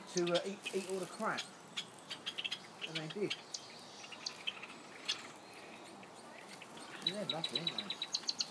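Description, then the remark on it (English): Java sparrows chirp in tiny, high squeaks with wings fluttering, scattered and then quickly repeated near the end, faint against a soft hiss, with muffled voices murmuring in the background. “You can hear the wings, and they're tiny little squeakings.”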